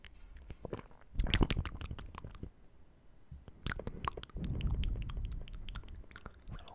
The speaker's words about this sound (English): Little bit of air nibbles, you know. Sometimes you just need those air nibbles.